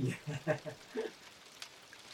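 Rain patters steadily on a roof overhead, a soft, continuous hiss with scattered light taps, fairly quiet, with a faint murmur of voices early on.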